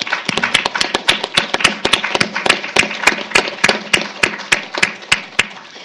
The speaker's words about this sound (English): Thanks to each of you. Let's give them another round of applause.